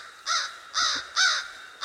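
A crow caws four times in quick succession, each call harsh and raspy, evenly spaced, with no voices or other sounds around it.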